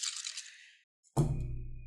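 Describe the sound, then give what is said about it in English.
Nine eight-sided dice rattle briefly on a table with a fast, clicky patter, then fall silent before a heavy, low thud lands and rings on with a dull rumble. “Give me your cursed dice. Those are 9 now. 3, 6, 9. Okay, here we go.”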